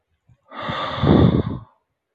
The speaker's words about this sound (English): Gently breathing in. Focusing on breath. Gently breathing out.